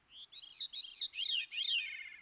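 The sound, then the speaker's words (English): A veery (Wilson's thrush) sings a short phrase of clear, mellow, flute-like notes in a series of four or five rising and falling whistles, moderately loud with no other sounds. “Presently, he utters a few soft, mellow, flute-like notes, one of the most simple expressions of melody to be heard, and scuds away.”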